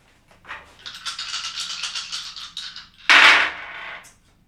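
Three twelve-sided dice rattle and clatter in a quick run of hard clicks for about two seconds, then a loud crash as they land and tumble to a stop. No one speaks.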